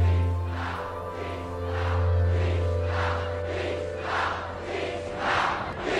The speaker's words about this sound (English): It's a big crowd and it's grown progressively larger as this day has worn on. By late afternoon, when this film was made, over 10,000 demonstrators were gathered in Chicago's Grant Park, not far from the Hilton Hotel.